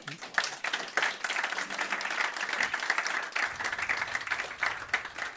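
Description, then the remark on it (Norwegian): Steady applause from an audience at a live show, welcoming a newspaper journalist guest: a dense patter of many hands clapping at a fairly even level for several seconds, with no voices standing out over it. “Gi henne en god applaus.”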